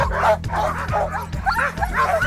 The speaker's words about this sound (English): They're running, they're jumping, they're barking, they're just going. It's like being at a rock concert.